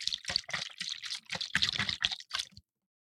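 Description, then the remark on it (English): Water glugs and sloshes out of a bottle of water in a quick series of gurgling bursts for a couple of seconds, then stops abruptly into silence. “That was my bottle of water.”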